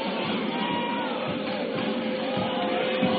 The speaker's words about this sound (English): Here's Ty Randall. Turnaround jumper up and good. Oh, the crowd on fire. What an atmosphere.